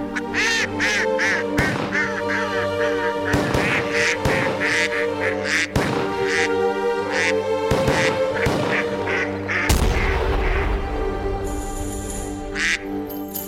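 Mallard ducks quack again and again in a bouncy rhythm over a steady instrumental holiday tune in classical style, the nasal quacks standing out loudly against the music throughout.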